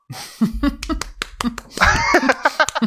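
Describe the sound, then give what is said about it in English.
A run of sharp hand claps welcoming a guest, about a dozen quick cracks in an uneven rhythm, mixing with voices talking and a brief burst of excited chatter. “I just thought millions oh clapping.”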